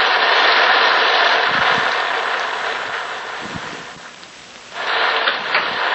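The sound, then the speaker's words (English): Heavy rain pours down in a steady, dense hiss, easing briefly for a moment before surging back to full strength, loud, with no voices. “And the rain. Look at the rain.”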